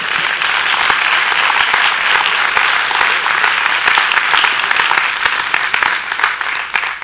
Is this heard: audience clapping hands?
yes